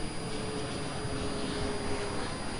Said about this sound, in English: Hello, airplane.